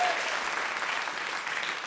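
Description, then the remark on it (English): A round of applause from an audience for guest Emma Kennedy on winning Celebrity MasterChef, a steady dense wash of many hands clapping at an even loudness throughout, with no voices standing out. “That round of applause.”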